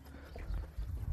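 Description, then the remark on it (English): The hooves of an older gelding, about 13 or 14 years old, a team roping horse being ridden, clip-clop in a short, steady series of dull thuds on the ground, moderately loud, with no voices. “my buddy Joe's horse, and his name is Bingo. And he's an older horse.”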